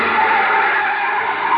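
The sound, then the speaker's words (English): A car skids hard, its tires letting out a loud, steady screech that holds for the whole short stretch. No one speaks over it. “Yeah, this is as far as we can go in the car.”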